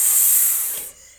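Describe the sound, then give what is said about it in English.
A person makes a sharp, sustained snake-like hiss with their voice, loud, holding steady for nearly a second before cutting off abruptly. “Snake.”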